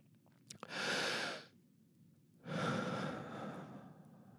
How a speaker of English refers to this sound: And now I'm going to take a deep breath for Miss Melissa the Bathtub Mermaid, and we're going to do this scene.